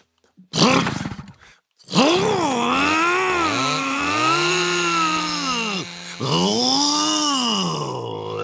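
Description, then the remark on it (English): A voice mimics a gas-powered engine being pull-started like a lawnmower: a short sputtering burst, then a sustained, wavering droning rev that rises and falls in pitch, with a brief break before revving again. “And you gotta pull a fucking string like a fucking lawnmower and shit, start that bitch up.”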